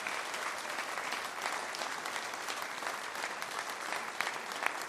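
Steady applause from an audience, a dense, even patter of many hands clapping at once that holds at a constant moderate level throughout, with no voices standing out.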